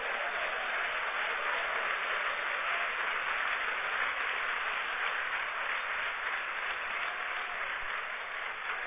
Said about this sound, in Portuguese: E agora aplauda o Senhor bem forte por essa palavra.